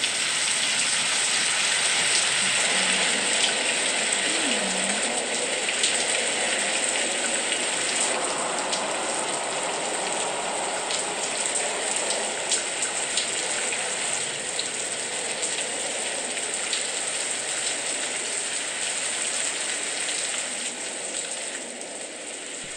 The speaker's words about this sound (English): Forgive that short interruption, everyone. We had a storm that knocked out the Wi-Fi for a moment. So we hope you enjoyed the rain, but now back to our podcast.